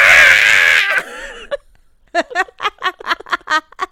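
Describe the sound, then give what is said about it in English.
A loud, shrill human scream, screamed into someone's ear through headphones as a practical joke, rings out for about a second and cuts off. After a short pause comes a rapid string of short, choppy vocal bursts, like sobbing gasps. “Enjoy the tones of me screaming in your ear.”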